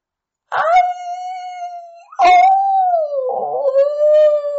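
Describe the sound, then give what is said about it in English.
Several dogs howl together in long, drawn-out, wavering cries, their voices overlapping and rising in fresh waves, loud, with no one speaking. “It sounded like a million dogs howling, or people wailing.”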